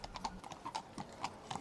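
horse hooves clip-clopping

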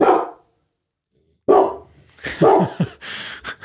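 dog barking

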